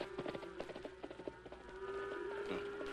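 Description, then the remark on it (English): Cattle low in long, drawn-out moans that blend together like a herd, with soft irregular knocks and shuffling underneath and no voices. “suppose them cattle takes a notion to wander right where you're supposed to be.”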